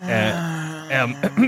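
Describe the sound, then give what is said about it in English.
A voice imitates the raspy gasp of a human-sized creature crawling along the ground: a drawn-out, strained groaning breath, then a couple of shorter harsh catches, fairly loud with no other sounds. “It issues a raspy gasp.”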